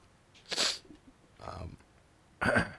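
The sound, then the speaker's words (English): A person sneezes sharply, followed by a brief softer burst and then another loud sneeze, three bursts in under three seconds, close and clear with no talking. “Gesundheit.”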